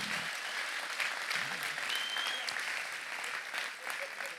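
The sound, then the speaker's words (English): A crowd applauds steadily, a dense wash of clapping that holds at an even level for several seconds, with a faint voice or cheer briefly rising above it. The applause is for the pastors and senior leaders at the Rise 2024 evening event. “Why don't we give it a big old clap for them tonight?”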